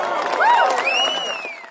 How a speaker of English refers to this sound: Unlike McKee, the only thing drowning … out were cheers and applause.